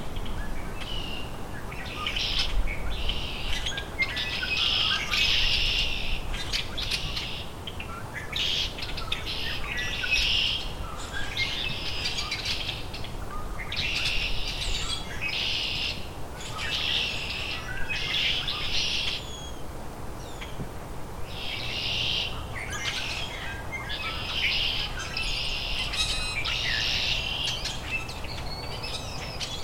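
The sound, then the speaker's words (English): Hairy woodpecker calls, sharp high notes in repeated clusters through the whole stretch over a steady outdoor hiss, fairly clear, with no one speaking. “Hairy woodpecker.”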